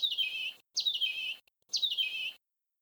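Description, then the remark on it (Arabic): An injured small bird that has lost its right wing cries out in pain, chirping in three bright, high-pitched bursts, each lasting about half a second with short pauses between, clear with no other sounds. “وذات يوم وبينما كان تيتو يجمع الأزهار الجميلة ليقدمها لأمه سمع صوت عصفور يصيح.”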